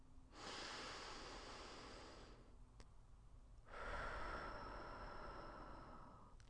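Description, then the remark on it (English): Two long, deep, calm breaths taken slowly and steadily as tactical breathing, an airy inhale followed after a short pause by a fuller exhale, with no talking. “You need those deep breaths, at least one, if not two or three, deep, calm, relaxed breathing.”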